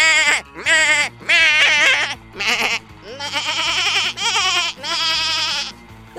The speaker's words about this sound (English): This is a tiny piano I invented where every key makes the sound of a screaming goat.